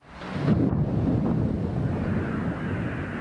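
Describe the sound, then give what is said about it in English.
A deep, thunderous explosion rumble swells up within the first half second and rolls on steadily, loud and low-pitched, with no voices: Ukraine's air defense system shooting down incoming missiles over cold, snowy Kyiv. “Thunderous explosions over the cold, snowy landscape of Kyiv that startled even the birds.”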